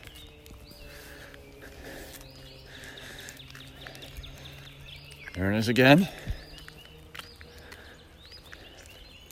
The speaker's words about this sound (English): So, we've got a wild turkey around here. That or somebody's raising turkeys. That's the other possibility. I think it's less likely, though. I think it's probably a wild one.